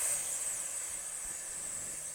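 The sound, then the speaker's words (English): A steady, breathy hiss from a person exhaling through their teeth, imitating a snake as part of a breathing exercise, held for about two seconds at moderate volume with no talking. “And when we breathe out, we're going to hiss like a snake.”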